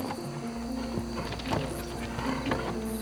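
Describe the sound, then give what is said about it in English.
Hooves of a horse pulling a buggy clop on a hard street in Shadowbrook Camp in a steady, even rhythm, about two strikes per second, with a faint mechanical rattle and low rumble underneath and no voices. “With a flick of the reins, they embarked on the short journey, the rhythmic clopping of horse hooves serenading their way through the serene streets of Shadowbrook Camp.”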